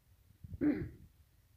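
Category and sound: human body sound, throat clearing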